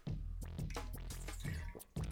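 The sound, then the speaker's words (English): Water sounds: water pours, then a quick series of gulps or swallows as someone drinks it, in an uneven rhythm, fairly loud, with no one talking. “Hold on, let me get some water real quick.”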